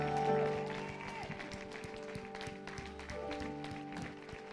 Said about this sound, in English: Clap. Clap. Give God praise.